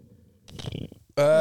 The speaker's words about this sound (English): That was aggressive. That was an aggressive burp. Nothing more aggressive than it sounded like it came from your ass up to your mouth.